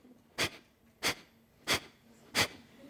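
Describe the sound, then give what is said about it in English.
Four sharp, forceful exhales through the nose in a breathing exercise that focuses only on pushing air out, evenly spaced about two-thirds of a second apart, each a brief breathy hiss burst with quiet between them and no talking. “So we exhale through our nose, make sharp shooting breaths.”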